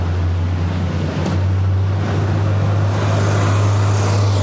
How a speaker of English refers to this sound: I'll let you know when traffic is clear.